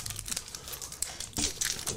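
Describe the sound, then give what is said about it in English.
The plastic wrapper of Warheads Tangy Typhoon sour taffy candy crinkling in a steady run of crackly, high-pitched rustles for about two seconds, growing a bit louder near the end, with no voices. “Warheads, tangy typhoon. Dude, these are stupid bomb. Sour taffy.”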